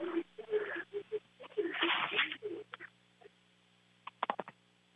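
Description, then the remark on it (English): A single raspy, breathy snore from a male radio call-in caller in Minneapolis, Minnesota comes through a thin phone line, surrounded by faint smacking and shuffling noises and a few sharp clicks near the end, with no one talking. “Is he snoring? We got a snore tonight.”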